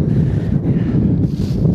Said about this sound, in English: It's very windy too.